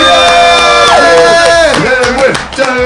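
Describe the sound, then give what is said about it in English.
A single voice imitates a roaring, cheering crowd, letting out loud, sustained whoops that slide down in pitch, energetic, for a few seconds. “The crowd explodes in euphoria as you stand there panting, arms in the air, celebrating your triumph.”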